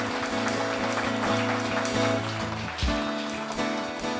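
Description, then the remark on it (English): A worship audience claps steadily and loudly for the Lord after a prayer, a dense crackle of many hands sustained throughout, while a band plays sustained chords underneath. “Let's give the Lord the loudest clap offer that we can give Him.”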